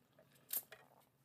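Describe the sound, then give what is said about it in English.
A soft sip of water: a short, hissy slurp followed by a fainter second gulp, with no talking, set against a quiet low hum. “Let me sip some water.”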